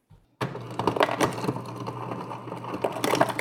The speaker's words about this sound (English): So let's get some cold water. I'm gonna put some ice cubes in there and just see what happens with that.